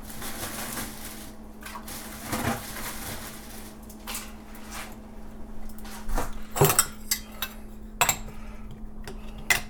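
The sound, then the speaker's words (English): Ice is dropped into a cocktail shaker holding muddled kiwi, with a scattered series of hard clinks and rattles, busiest partway through, over a steady low hum. “Add a little bit of ice.”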